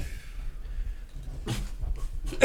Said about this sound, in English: Yeah, that's how you know you did the weed. Hear that cough? Yeah, we just did a lot of weed together.